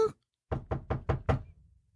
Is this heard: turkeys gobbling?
no